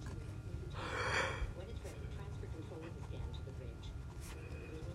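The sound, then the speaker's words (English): A single drawn-out, breathy yawn from one person, fairly loud, lasting about a second over a low background hum, followed by quiet shuffling and faint mouth sounds. “I wonder how many people I just made yawn.”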